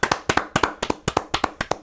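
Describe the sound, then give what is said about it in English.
A few people clap together in a quick, steady rhythm, roughly a dozen sharp claps in under two seconds, with no voices over them, applauding West Ham for their performance in beating Liverpool. “So yeah, I think we should clap for West Ham because this was a brilliant performance.”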